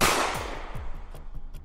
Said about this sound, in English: It was around 2 a.m. when he finds Vincent on the couch in a den, fast asleep. Vincent doesn't even see it coming, a gunshot wound to the head.